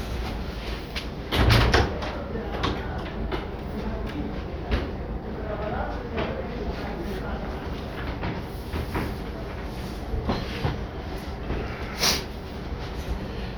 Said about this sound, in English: I'm gonna open the door because it's the heat's on and I'm mooting. One second.